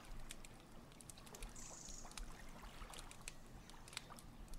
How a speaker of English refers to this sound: This is Frog Tries to Get Out of Puddle.